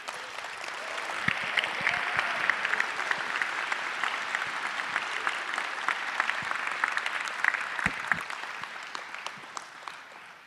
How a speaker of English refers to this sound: I want you to give them a huge round of applause as they get us started.